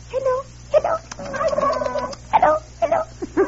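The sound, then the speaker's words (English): A turkey in a crate gobbles in a rapid, warbling burst, then lets out several shorter throaty gobbles in quick succession, loud and uneven in rhythm with no talking over it. “Who ever heard of chloroforming a turkey?”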